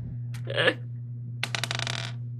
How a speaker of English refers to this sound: Yeah, give me a 20-sided dice roll.